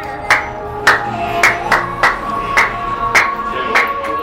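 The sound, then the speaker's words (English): A single pair of hands claps about eight or nine times in a steady, moderately quick rhythm, each clap sharp, over a faint steady background hum. “This is a no clap zone.”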